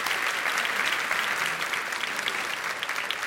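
A live show audience applauds steadily for a guest seated among them, a dense, continuous wash of many hands clapping at an even, fairly loud level throughout, with no voices standing out.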